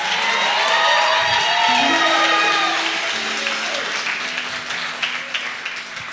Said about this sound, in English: Clap your hand and give him a praise.